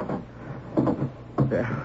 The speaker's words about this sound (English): Now, I must lock the cell door.